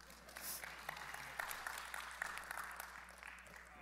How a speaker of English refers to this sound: How's that? Everybody can clap.